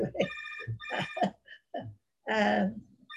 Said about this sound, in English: And I don't know why this silly telephone is ringing. It can just ring.